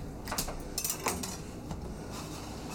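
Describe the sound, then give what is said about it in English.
Spinach drops into a pot of boiling water: a few soft splashes and light clatters over a steady bubbling hiss, with no one talking. “So spinach is going in the boiling water.”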